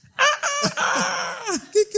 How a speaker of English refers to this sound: The rooster crowed. Cantó el gallo.